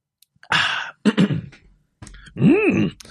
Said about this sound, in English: I'm clearing my throat because I was going to do the Yoda voice. I'm going to see if I can do it. Actually, I'm going to take a sip of water so I can properly do the Yoda voice from, was it episode one?